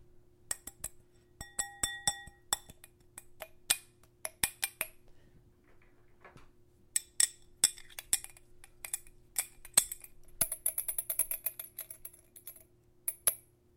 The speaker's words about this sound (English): Mom, why are you just, like, rattling a wine glass?